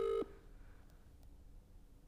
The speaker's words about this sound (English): The bloke who gave us COVID, and now he's not even going to pick up the phone.